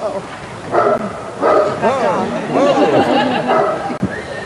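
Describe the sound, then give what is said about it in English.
The Irish president's dog barks repeatedly at the sight of Joe Biden in a loose, uneven series of loud woofs, with the murmur of people talking in the background throughout. “The dog of the Irish president barks at the sight of Sleepy Joe Biden.”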